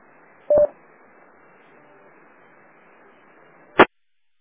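A single short touch-tone (DTMF) dialing beep for a 9-1-1 autopatch call on a radio repeater sounds over a steady bed of faint radio hiss, followed about three seconds later by a brief, sharp burst of static. No one speaks.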